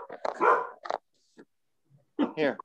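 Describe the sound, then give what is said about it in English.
A service dog barks and whimpers into a microphone in loud bursts of yelps and whiny cries, falling silent briefly before another run of high, wavering whimpers. “The dog is taking up your mic, so you'll have to try again here in a moment.”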